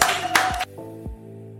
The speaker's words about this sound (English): Succinct, well said, and a star is born. Everybody give a round of applause to Brian Derrick!